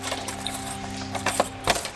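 Keys jangle and clink in a few short metallic bursts over a steady low hum. No one speaks.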